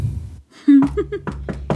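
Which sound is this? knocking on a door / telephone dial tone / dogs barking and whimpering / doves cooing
knocking on a door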